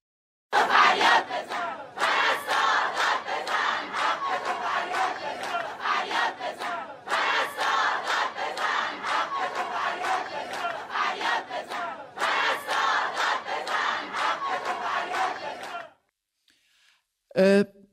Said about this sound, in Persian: این فیلم تجمع اعتراضی پرستاران عراق رو ببینیم، برگردیم باهاش در موردش با هم صحبت کنیم.